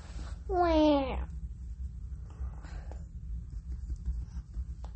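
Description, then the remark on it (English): A single big, drawn-out voiced yawn, a loud wavering tone that rises and then slides down over about a second, followed by quiet background rumble and faint rustling. “Oh, I just yawned really big.”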